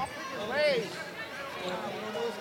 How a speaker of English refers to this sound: It's a final. 58-49. Sun Valley advances with a rematch with Porter Ridge. The crowd saying goodbye for us.